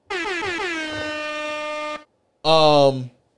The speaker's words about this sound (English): Air horn yourself.